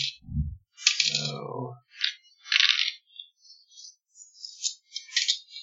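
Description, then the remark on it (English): Dice are picked up and rattled, clattering in a series of sharp clicking bursts, some clustered and some spaced apart, with a low thump near the start. No one speaks. “All of you, wait, someone picking up dice?”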